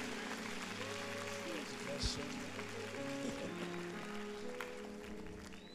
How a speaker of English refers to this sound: Church, and if you receive it, come on, clap your hands and give God some praise.